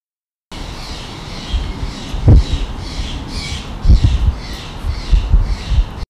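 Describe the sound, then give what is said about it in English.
A Steller's Jay gives a rapid series of harsh, raspy squawks in a steady rhythm, loud, with a few low thumps underneath and no talking. “This episode, our bird spotlight is on the Steller's Jay.”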